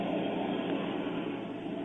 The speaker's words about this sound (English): Wait, what's that? Hey! Who let that plane get so close?